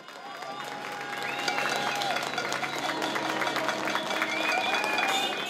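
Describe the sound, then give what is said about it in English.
A steady round of applause from many people clapping for healthcare staff on a Thursday evening at 8 p.m., dense overlapping claps with whistles and faint cheering mixed in, sustained throughout at moderate loudness with an open, outdoor feel. “And lastly, I'm sure you're all familiar with the Clap for Our Carers, in which the nation joins in a round of applause every Thursday evening at 8 p.m.”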